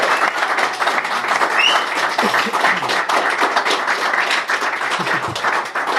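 Steady audience applause, a dense wash of many hands clapping that holds at an even, fairly loud level for about six seconds, with no break or fade.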